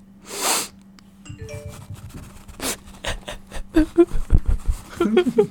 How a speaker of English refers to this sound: We're going to be rustling around with tissues. This is what it sounds like when you're feeling sad and you really need to blow your nose.